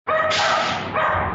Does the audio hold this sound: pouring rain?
no